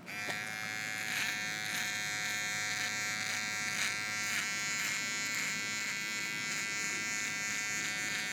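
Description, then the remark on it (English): An electric razor buzzes steadily as it shaves off a mustache on a porch, a continuous high-pitched motor whine with small shifts in tone as the blades move across the hair, with no talking. “Your mustache hair is all over time, my porch.”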